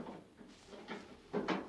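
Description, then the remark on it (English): A heavy dungeon door creaks and scrapes open in a few drawn-out bursts, the last one louder, with no voices. “Someone comes to the door now.”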